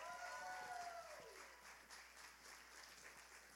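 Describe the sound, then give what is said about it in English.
A crowd applauds steadily for people being introduced, dense clapping with a few cheers at the start that fade as the clapping continues. “Will you just give them a loud round of applause?”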